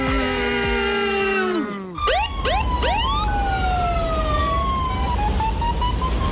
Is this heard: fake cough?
no